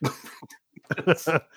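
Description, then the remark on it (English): A person coughs several times after a brutal Metcon workout: one harsh cough, a short pause, then a rapid cluster of three or four chesty coughs, fairly loud, with no talking. “Jeez, I'm going to cough again.”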